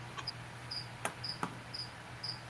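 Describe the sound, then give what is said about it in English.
Crickets chirp steadily in short, regular bursts about twice a second, faint over a low background hum, with a couple of sharp clicks partway through. “Shut up, crickets!”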